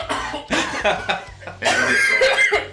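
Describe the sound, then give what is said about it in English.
A loud coughing fit: several harsh, rapid coughs in bursts, with a brief pause before a longer, more strained run of coughing and throat rasping. “I'm coughing now, oh my God.”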